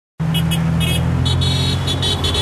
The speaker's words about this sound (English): Canberra traffic honking in support of the rally calling for strong climate action that greeted our political representatives as they fronted up for work at Parliament House on February the 4th.